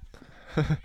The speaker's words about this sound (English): if you guys can't see this, he's literally abusing the cat. All you can hear is the sound effects coming from her.